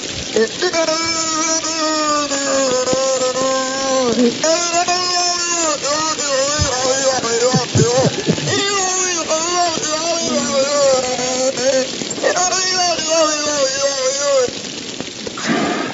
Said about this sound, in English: But it's been rumored that these whales can emit noises that sound like humans talking. And for the first time, they've actually recorded Knock the whale making these noises, and they have it on tape.